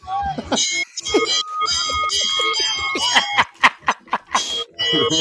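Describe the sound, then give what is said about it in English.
A loud bell rings insistently, its bright metallic tones ringing on and off across the whole stretch, while people talk and laugh over it. “People might need to lower their volumes while that bell is ringing.”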